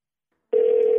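After a moment of silence, a steady electronic ringback tone starts up on an outgoing phone call, a single sustained clear hum with no voices.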